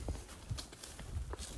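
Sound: horse hooves clip-clopping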